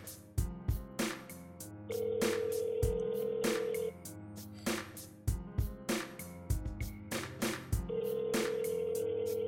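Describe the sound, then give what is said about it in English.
An outgoing call's ringback tone sounds twice, each a steady two-second buzz separated by a long pause, over a rhythmic background of thumping beats. “All right, I was calling him.”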